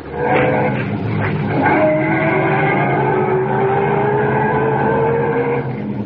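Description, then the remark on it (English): A car engine revs and pulls away up the road, its droning pitch climbing steadily as it accelerates, with a rough, rumbling road noise underneath throughout. “Get back in the car and head up the road again.”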